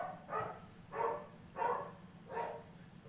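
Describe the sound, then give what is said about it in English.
Four evenly spaced dog barks, moderately loud, ring out over a low steady background hum with no talking, as a door is opened and a pack of dogs is let in. “You're always what I'm doing, because we open the door and let all the dogs in now.”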